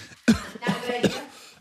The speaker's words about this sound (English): Not a good idea. Why am I coughing? I'm trying to record an intro.